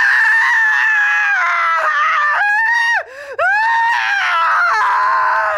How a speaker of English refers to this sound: At that moment, Deborah Leeds let out a blood-curdling scream.